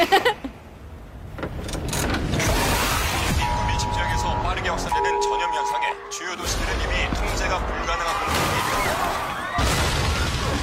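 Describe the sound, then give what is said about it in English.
Dense, loud film-trailer soundtrack full of booming explosions and crashing impacts, with sustained tones and muffled voices woven through, sounding dramatic and continuous. “Explosions.”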